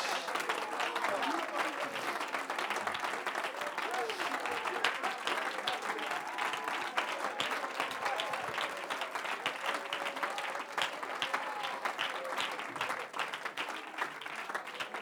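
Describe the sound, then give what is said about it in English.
An audience claps steadily for about fifteen seconds, a dense, continuous patter of many hands at even loudness, with voices mingling underneath the applause. “Don't let the devil convince you that you're not good enough to clap.”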